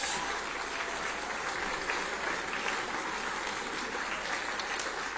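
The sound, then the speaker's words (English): Steady, sustained applause from an audience, a dense wash of many hands clapping at an even loudness for several seconds with no voices standing out, given for 39 men who committed to a 90-day program. “So if you're here, guys, and you did this, if you just want to stand up, because we just want to give you a huge applause, because you're awesome, man.”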